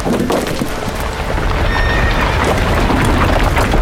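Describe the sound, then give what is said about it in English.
A loud, dense rumble of a boulder crashing down beside a trail fills the scene as horses whinny and their hooves pound away in a rapid, continuous gallop as they flee, with no one speaking. “That boulder nearly hit us! And now the horses have fled!”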